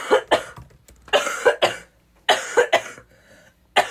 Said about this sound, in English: It starts with a cough.